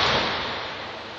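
A wallet drops onto the floor with a single flat slap, followed by a brief rush of noise that fades away over about a second. No voices are heard.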